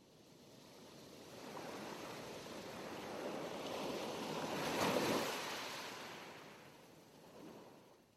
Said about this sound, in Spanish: Escucha las olas agitándose y chocando con las piedras o la arena de la orilla.